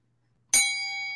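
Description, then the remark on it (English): A single bright bell ding strikes sharply and then rings on with a clear, sustained metallic tone that fades only slightly, heard alone. “anytime Steve gives you a nugget like that, or I give you a nugget like that, we hit the media nugget bell”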